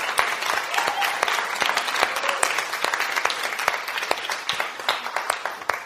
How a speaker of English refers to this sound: So I think we should just give everyone a round of applause who's been involved with this. It's just amazing.